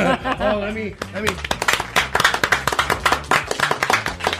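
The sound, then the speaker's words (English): A short vocal murmur gives way to a few seconds of audience clapping for guest Henry Winkler, quick uneven claps from several people, moderately loud and steady until the end. “I didn't hear any clapping.”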